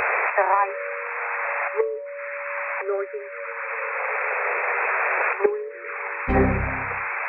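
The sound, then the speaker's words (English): A shortwave broadcast from German number station G06: a steady band of radio hiss with droning carrier tones, interrupted by a few brief crackling dropouts and a low rumbling burst near the end. “Last time, while listening to German number station G06.”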